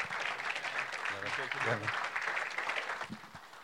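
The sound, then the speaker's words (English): An audience claps steadily for nearly four seconds to welcome a speaker being introduced, a dense, even wash of many hands with no break, while a brief voice calls out partway through. “And so great pleasure to introduce to you, if you clap your hands, your best for my friend here,”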